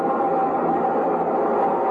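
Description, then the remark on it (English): A steady, loud rumble of a subway train running continuously through an underground station, with a dense roar and a faint metallic whine riding on top, unbroken throughout. “And between the subway trains and the soft cluckings of the mob, a man in a brown, ready-made suit shouldered his way.”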